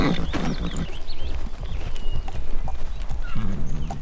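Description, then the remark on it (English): A horse's hooves clip-clop steadily at a walking pace, fairly loud, a regular clatter of hoofbeats as the horse sets off carrying two riders, with no voices over it. “I'm just going to slide you forward and get on behind you. Right, I'll come back for all the stuff later. Let's go, horsey.”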